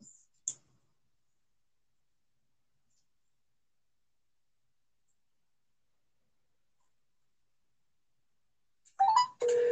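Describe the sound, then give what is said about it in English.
A click near the start, then a long stretch of near silence before a phone ringtone suddenly starts, loud, as someone calls the phone, and plays steadily through the final second. “Blowing up her phone.”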